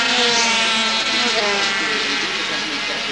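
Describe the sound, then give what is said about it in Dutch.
Small 50cc racing motorcycles, ridden in a race by Tormo, Durflinger, Van Kessel and Theo Timmer heading toward Bedeldijk, scream past at speed, their high, buzzing engine whine loud and continuous, the pitch sliding as they go by, with a voice commentating in Dutch over the noise. “De man die op het ogenblik aan kop staat van dat 50cc geweld.”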